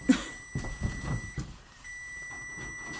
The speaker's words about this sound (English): Oh, hey, there goes the timer.